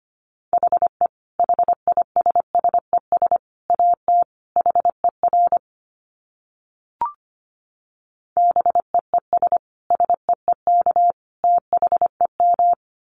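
Rapid Morse code at about 25 words per minute: a steady mid-pitched tone keyed in quick dits and dahs, grouped into bursts with a pause in the middle and one brief chirp.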